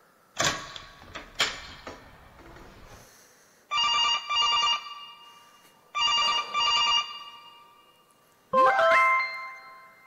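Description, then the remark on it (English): An old telephone's bell, real bells struck by a hammer moving back and forth, rings loud in two bursts, each a quick double ring with a bright metallic trill, after some clattering knocks and before a short rising electronic tone. “It was actual like bells, and there's a hammer that goes back and forth.”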